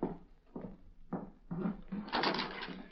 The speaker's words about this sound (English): Guess I'd better open that back door now.